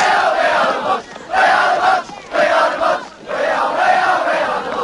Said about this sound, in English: You're hearing a portrayal of the fighting between these two cliques in the movie Quadrophenia